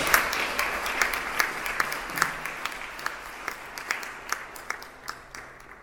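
An audience applauds steadily to welcome performers to the stage for a poetry reading, many hands clapping in a dense, sustained patter with sharper individual claps popping out, moderately loud, with no voices over it.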